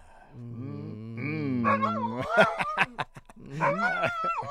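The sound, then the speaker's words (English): A dog named Mahler barks and vocalizes on its own: a long, wavering whine-like moan, then a quick run of sharp, loud barks, ending in more whiny, yelping sounds. “Well, you're a talkative boy today, Mahler.”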